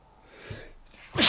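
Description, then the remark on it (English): A single sharp sneeze, preceded by a brief quiet inhale, bursting loud at the end with a bright, hissing rush of breath. “God bless you.”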